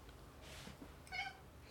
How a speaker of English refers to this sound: Oh, my cat has come to visit. Say hello to Lore, everybody.